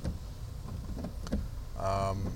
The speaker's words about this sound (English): No, I am not cooking bacon in my car. It is raining, and it's raining pretty darn hard.